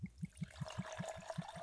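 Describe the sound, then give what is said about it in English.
Liquor glugs from a freshly opened bottle into a glass as a generous pour to drink neat: a quick, steady run of soft gurgling pulses over a thin trickle, with no voices. “I'm going to pour a good pour of this one.”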